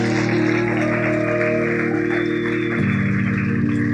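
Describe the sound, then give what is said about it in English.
A crowd gives a round of applause for the Savior, clapping in a steady, continuous round over sustained keyboard chords that hold, then shift to a new chord near the end. “Can you give the Savior a round of applause for those that are standing in the room?”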